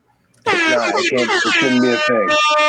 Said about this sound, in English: sometimes we go the whole show without an air horn. You got it within the first like 30 seconds, and now I think you're on number 2 or 3 right now.